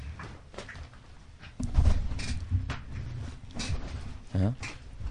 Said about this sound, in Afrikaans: your chair, does it still make a noise? It's not die stoel nie, it's die ene. Luister.